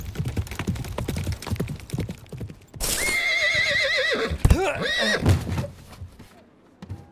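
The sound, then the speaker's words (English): Rapid hoofbeats clatter for a few seconds, then a horse lets out a loud, quavering whinny that rises and trembles before trailing off with a few snorts and scattered clops. It is Feyora's horse coming back on a stage and pummeling Devok across it. “Devok stabbed Feyora, and then Feyora's horse came back and pummeled Devok across the stage.”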